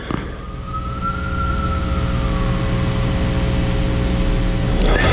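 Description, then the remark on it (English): An emergency vehicle siren wails over a heavy, steady traffic rumble, its tone rising and then sliding lower as it passes by, with no one speaking. “I've had Comedy Gold a couple times where you've heard sirens.”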